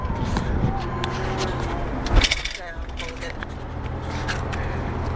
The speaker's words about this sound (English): where we're in a car at the moment, just driving, and we just thought, you know, just record our conversation.